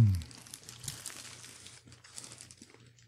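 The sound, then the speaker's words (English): Someone chews a chicken biscuit with soft, irregular crunching and crinkly crackles that continue steadily for a few seconds over a faint low hum, with no talking. “Okay, let's give this a taste.”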